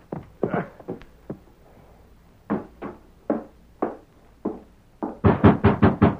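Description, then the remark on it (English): Firm knocks on the wooden door of a sheriff's home at dawn come in uneven pairs and singles, then build into a louder, rapid burst of pounding at the end. A few softer thumps come first, with no voices. “The door. Who's there?”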